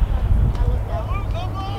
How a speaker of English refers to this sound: Lights have been on here since we arrived at the ballpark. It's an overcast day, very windy. As you can probably hear in the background.